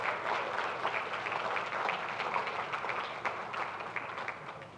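Steady, sustained applause from an audience welcoming two guests coming up to the front, a dense wash of many hands clapping at even loudness for several seconds with no one speaking.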